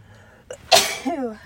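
A single loud cough-sneeze: a quick sharp intake of breath, then an explosive burst that trails off into a short voiced groan.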